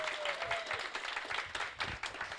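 An audience claps together in a steady, dense burst of applause, many hands overlapping into a continuous crackling roar that holds at an even level throughout.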